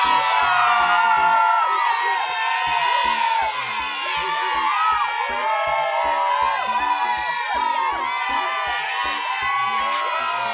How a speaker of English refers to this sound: Please give a big round of applause for our special guest